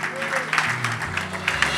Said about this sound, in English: In Jesus' name. Somebody give a clap of hand to the Lord.